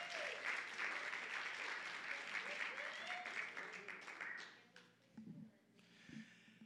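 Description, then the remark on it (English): A church audience breaks into loud, sustained applause mixed with shouts and whoops for several seconds, honoring the worship team, media crew and ushers, then the clapping fades out as a man's voice begins speaking. “You can always tell when you give honor to the worship team, they shout louder for anybody than, nobody, it's just themselves.”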